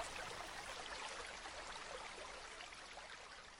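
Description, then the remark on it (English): Water flows steadily in a stream, a dense, continuous rushing and gurgling wash of sound that stays even and unbroken throughout, with no voices. “I don't have a stream in my backyard, but there is a state park pretty close, and whenever I get the opportunity, I like to go and just sit and listen.”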